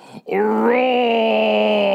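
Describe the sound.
A man imitates an animal roar: after a brief breathy lead-in, a long, sustained roar, strained and harmonic with a slight rising sweep early on, holding loud and steady to the end.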